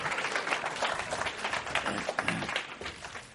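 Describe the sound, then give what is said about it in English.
Steady audience applause welcoming Brian Greene and Kishore Hari, a dense wash of many hands clapping at once, sustained and fairly loud throughout with no voices standing out. “I'll keep on clapping, please.”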